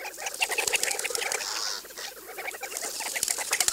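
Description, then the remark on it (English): A busy flock of birds chatters and calls continuously, with fluttering wingbeats and scattered small clicks and splashy rustles mixed in, and no voices; a male desert bird wades belly-deep at a shallow desert water hole in the cool morning, rocking and shaking its belly feathers in the water. “In the cool of the desert morning, the male flies up to 20 miles to a shallow water hole, then wades in up to his belly.”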